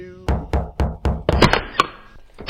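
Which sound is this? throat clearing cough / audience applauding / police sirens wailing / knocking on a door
knocking on a door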